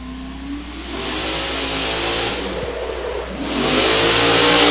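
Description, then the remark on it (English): A racing truck's engine revs hard during a team competition run in the Town of Brookhaven, its pitch climbing in a steady roar that swells louder toward the end, with no voices over it. “Truck is flying, the handle's down.”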